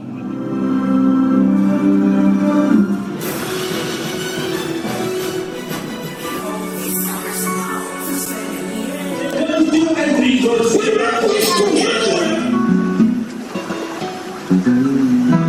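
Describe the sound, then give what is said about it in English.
A busy mashup of theme-park ride audio from Splash Mountain, Seven Dwarfs Mine Train, Snow White's Scary Adventure and Mr. Toad's Wild Ride: layered music and effects that shift abruptly from one snippet to the next, with splashing water textures and moments of voices, loud and continuous throughout. “So here is your official sound bite for the giveaway for Epcot.”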